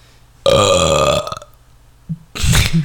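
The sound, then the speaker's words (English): A loud, drawn-out burp rumbles for about a second, followed by a short pause and then a second, rougher belch with a raspy, breathy edge. “Anyone who's like listening to that in the car, and they're just going to hear a fat burp, and they'll be like, what the f-?”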